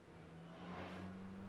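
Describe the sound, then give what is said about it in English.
A futuristic car engine hums and revs, a steady electric-sounding whir that swells and lifts in pitch partway through. It's fairly loud, with no voices. “Future cars.”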